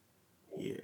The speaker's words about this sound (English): I was like, is he reading the paragraph ahead and gearing himself up for an info dump, or is he about to burp and then you burped?